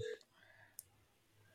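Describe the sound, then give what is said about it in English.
A faint phone dialing on speakerphone, the phone held up to a microphone: a brief electronic tone at the start, then a sharp click and a low steady hum in otherwise quiet surroundings. “You got to make sure you put your phone up to the mic.”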